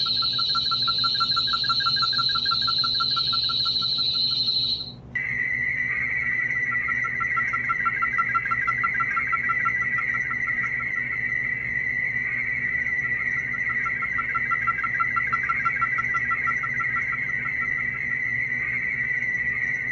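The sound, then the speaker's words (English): A steady, high-pitched electronic tone with a faint pulsing undertone plays for a few seconds, then drops to a lower sustained pitch that continues unbroken, part of a set of generated CE5 tones known as the Fibonacci sequence. “There's another set of tones known as the Fibonacci sequence.”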